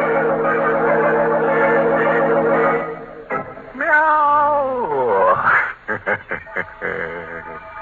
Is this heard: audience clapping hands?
no